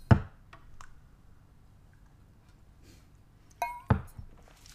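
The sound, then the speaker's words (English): Two sharp clinks of shot glasses of tequila touching in a toast, the second with a brief bright ring, separated by a few seconds of quiet background noise. “Cheers to another episode.”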